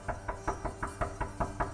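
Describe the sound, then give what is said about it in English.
A fast, steady series of about nine knocks on a door, evenly spaced, each a dull thud with no voices in between. “All I heard was the knocking.”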